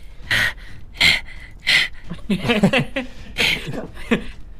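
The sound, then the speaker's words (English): Loud panting from someone outside, breathing heavily: three sharp, breathy gasps in a steady rhythm, then a burst of voiced huffing and more heavy breaths, like someone winded and out of breath. “And I'm outside, breathing heavily.”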